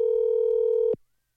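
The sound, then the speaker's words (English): A single steady electronic ringing tone on an outgoing phone call that goes unanswered, held for about a second and then cutting off abruptly into silence, with no voices. “Now, I think this will set a record if it goes to voicemail for the third time.”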